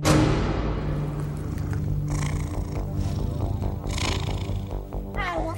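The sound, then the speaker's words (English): A cat, the character Agent Tybalt, vocalizes: a steady, rumbling purr-like drone runs throughout, with a short rising chirp near the end. “Tybalt, you're a cat?”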